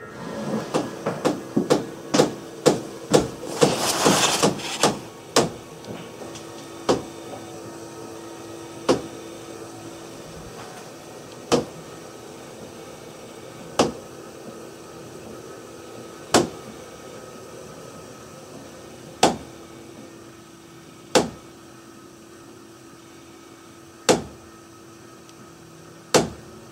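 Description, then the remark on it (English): Home plumbing water lines with air in them knock in a rapid, clattering flurry that thins into single sharp taps at slowing, spaced intervals, the later knocks ringing bright and glassy like tapping on glass. No one speaks. “Or these slap-happy water lines. Note how it begins to sound like tapping on glass near the end.”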